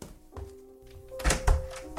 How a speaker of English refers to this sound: I opened the bedroom door and entered.